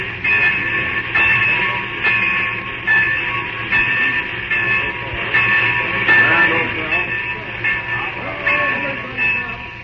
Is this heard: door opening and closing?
no